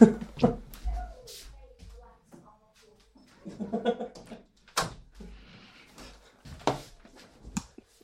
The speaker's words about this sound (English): So let me go close the door.